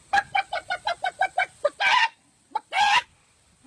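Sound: person imitating chicken clucking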